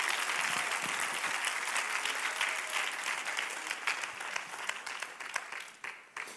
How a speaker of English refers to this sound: Come on, clap your hands. That's the power of gratitude.